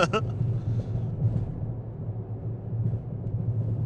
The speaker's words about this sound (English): So, oh, there's a car coming. I'm going to get over so they can get over.